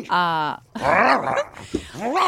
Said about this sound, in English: Ranger, down, Ranger, down. Your dog. Down, Ranger. Fucking everything up.